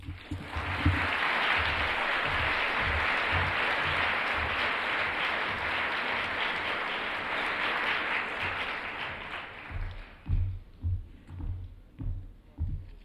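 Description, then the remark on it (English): Sustained audience applause for a musician and fellow performers, a dense hiss of many hands clapping that holds steady for about ten seconds, then tapers off as a low voice begins speaking over scattered claps. “Ladies and gentlemen, I hope that while we have applauded … and my colleagues, that this is the saddest evening.”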